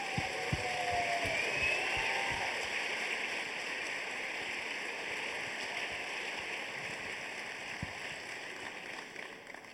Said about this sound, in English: Can I have a huge round of applause for this evening's guests?